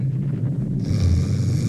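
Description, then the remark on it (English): A single drawn-out snore from Drax going back to sleep, low and rumbling, with a raspier, breathier edge creeping in midway through; fairly loud, with no talking. “When he'd had his say, he let go of Peter's collar and went back to snoring.”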